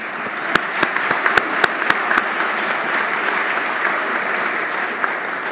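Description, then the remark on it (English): Steady audience applause at a club lunch, thanking event sponsors the Milbourne Group, Dream and Ayrton Bearless LLP; a dense wash of many hands clapping, with a few sharper individual claps standing out near the start before it continues evenly to the end. “Round of applause.”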